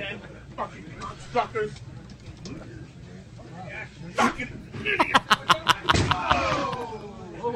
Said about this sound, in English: He's throwing his chair. Body slamming it.